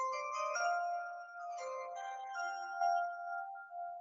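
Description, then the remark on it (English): A bright, ringing chime jingle, used as an NFL-style draft pick sound bite, plays several overlapping bell-like tones in a short melodic phrase, sustaining and slowly fading near the end, with no voices. “And for all you folks that have followed the NFL, we've got a little sound bite for y'all as we pick our picks.”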